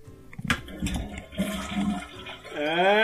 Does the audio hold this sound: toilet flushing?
yes